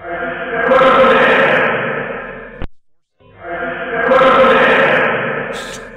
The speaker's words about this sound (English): And this is down in the basement. And listen to it echo. I mean, when we would talk down the basement, our voices would echo because there was nothing down there. But this echoes as well.